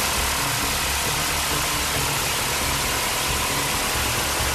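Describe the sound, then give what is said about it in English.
HMLA 267 Stingers military helicopters taking off in tandem on a hunter-killer mission, a loud, steady engine roar with a deep throbbing hum underneath and a broad hiss on top, holding constant throughout with no voices. “Here, HMLA 267 Stingers take off in tandem on a hunter-killer mission.”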